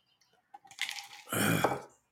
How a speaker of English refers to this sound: excuse me. Get some more water in me.